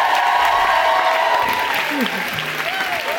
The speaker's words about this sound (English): We've done one show already yesterday, and I realised my mother got a bigger round of applause than me, so it feels only right to introduce